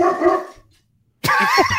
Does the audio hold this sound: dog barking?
yes